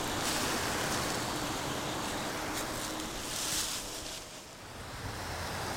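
A waterfall in a creek roars steadily, a dense, continuous rushing wash of water that barely changes for several seconds, with no voices.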